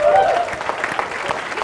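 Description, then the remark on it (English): An audience applauds an attendee who came from Washington D.C. and is being given a book. A dense, steady wash of many hands clapping holds at an even loudness, with a short high-pitched cheer rising over it at the very start. “Round of applause.”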